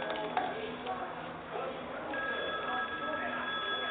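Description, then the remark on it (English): A telephone rings with a steady, high electronic tone that grows more prominent partway through, set against busy background noise with faint voices. “Hand me that phone.”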